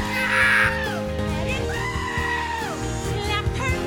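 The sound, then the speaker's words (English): A loud, goat-like bleating scream from a goat song video rings out over backing music, then a long, wavering cry is held for over a second before trailing off, with the music continuing underneath. “We'll be driving down the road, and my kids will be screaming like a goat every time they can.”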